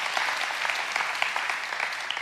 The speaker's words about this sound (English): Okay, now, I want you to clap for the Lord again, because here's what your defense attorney does.